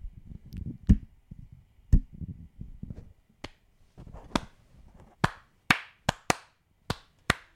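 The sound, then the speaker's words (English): Hand claps, sharp, starting as scattered single claps over a low rumble, then settling into a quicker, steadier run of about half a dozen crisp claps. “Clap it out.”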